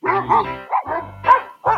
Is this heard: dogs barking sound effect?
yes